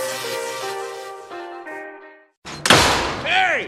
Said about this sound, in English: You kids, quit slamming my goddamn door!